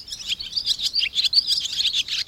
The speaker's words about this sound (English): Maybe now the chatter of the barn swallow is a more pleasing sound.